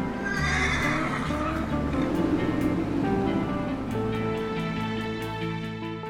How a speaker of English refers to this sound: And maybe a whinnying horse.